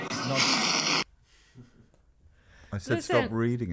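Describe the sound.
A loud breath rushes into the microphone for about a second as a harsh, noisy blast, then drops to near silence before someone starts talking.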